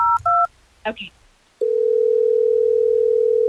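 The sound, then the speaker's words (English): Two quick touch-tone beeps from a phone keypad, a brief murmur of voice, then a steady, unbroken line tone humming loudly through to the end, as the Hot 101.5 radio show in Tampa Bay places a call to get a listener on the phone on air. “let's try to get him on the phone so we can figure this out”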